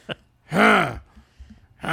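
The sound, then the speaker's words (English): A man grunts and groans, one long strained vocal push followed by a quick breathy sound, then another grunt begins right at the end. No words are spoken. “A lot of grunting. … is just breathing heavy.”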